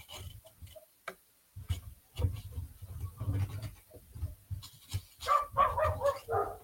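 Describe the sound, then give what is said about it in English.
A neighbour's dog next door barks repeatedly outside, sharp high-pitched yaps clustering into a quick flurry near the end, with a faint ticking pattern in the background and no talking. “So there's a dog next door who has got this really like high-pitched bark.”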